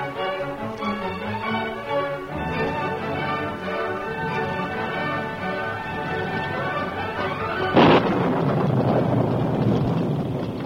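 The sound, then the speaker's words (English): Orchestral music plays, then a sudden loud crack of thunder breaks in near the end, followed by a steady, rumbling wash of storm noise and wind from a storm of great intensity at dusk on the trail toward Clayton. “It was dusk and a storm of great intensity had come up.”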